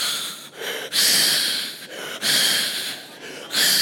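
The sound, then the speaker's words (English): A voice imitates the heavy, rasping breathing of an 11-month-old baby sleeping at night in the parents' bedroom, likened to a Darth Vader impersonation, with a steady rhythm of loud, hoarse inhales and exhales repeating several times. “He does a brilliant Darth Vader impersonation every night as he sleeps.”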